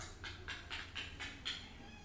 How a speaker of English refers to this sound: Hey, that was like a, I don't know if that was like a nice meow or aggressive. Well, this is happy. Oh, is it happy now? Yeah. Hey, kitty.